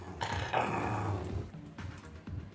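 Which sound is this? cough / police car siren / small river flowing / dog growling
dog growling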